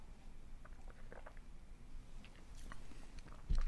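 Someone sips a drink from a taxi mug: soft, wet slurps and small mouth clicks over a quiet background, ending with a dull low thump.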